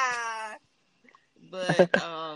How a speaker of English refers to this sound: This cat is playing with it, but right now.